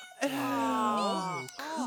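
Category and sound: animal, kittens meowing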